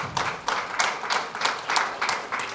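A church audience applauds steadily, many hands clapping in a dense, bright patter with soft regular surges, sustained at moderate loudness with no voices.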